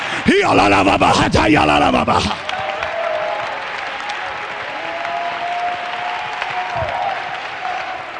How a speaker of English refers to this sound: Come on, clap your hands. Lift your voice.